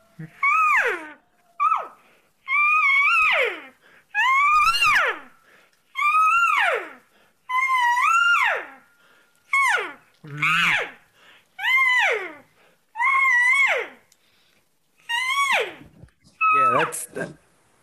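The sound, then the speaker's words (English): A person's voice imitates cow calls: about eleven loud, drawn-out bellowing calls in a steady series, each sliding in pitch, separated by short pauses, with no words spoken. “I got to kind of do regular cow calls when I do it.”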